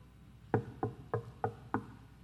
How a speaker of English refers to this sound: And he knocked on the door. Silence. He knocked again.